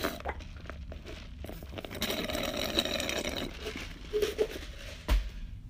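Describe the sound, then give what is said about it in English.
Noisy slurping of hot tea: one longer airy sip followed by a couple of short, sharper sips and a soft clink near the end, with no one talking. “Matter of fact, let me sip my tea right now as we are talking.”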